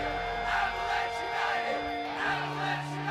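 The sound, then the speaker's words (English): A large crowd chants and yells together in a rhythmic, swelling roar, voices blending into a loud, continuous group shout with steady pulses of emphasis. “This is what the crowd will chant at shows.”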